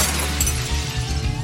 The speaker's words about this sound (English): When it comes to glass, that's a whole different story. Glass don't bend like metal. It shatters on account of the way the particles are bonded together.